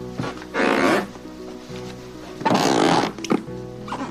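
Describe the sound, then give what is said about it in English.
Two drawn-out, groaning creaks of squeaky floorboards, each about half a second long, loud and close, with a brief extra squeak near the end and no talking. “How about squeaky floorboards driving you insane?”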